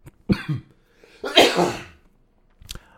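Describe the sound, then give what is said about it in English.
A few harsh coughs from a person in quick succession: a short bark, then a longer, louder explosive cough, and a brief final one, with no talking. “No, I'm coughing a lot.”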